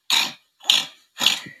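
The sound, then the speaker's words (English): A child makes three harsh, raspy growls in a steady rhythm, each roughly a third of a second, fairly loud, a voice imitating an angry dog with no talking around it. “I mean, I've got to be quite sensitive here, but is he hitting something or is he growling like a mad dog?”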